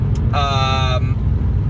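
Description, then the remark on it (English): Steady low rumble of a car driving on a car trip, heard from inside the cabin, with constant road noise throughout and a brief tonal sound rising over it for under a second near the start. “This was, like I said, a very light episode of us just being very random, and you came with us on a car trip, and we chatted about nothing.”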